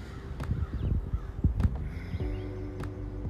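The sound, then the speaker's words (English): Harsh crow caws ring out several times over a rumbling outdoor background, with a longer, drawn-out call near the end and a few faint, high chirps of small birds in between. “There's also a lot of crows cawing and little tiny birds chirping.”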